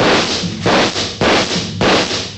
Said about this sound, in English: He took a full volley of shots from three police pistols square in the chest.